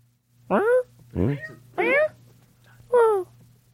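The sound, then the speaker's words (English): A cat meows four times in quick succession, each call short and clear, with brief pauses between them over a faint steady hum. “Hello, Kitty.”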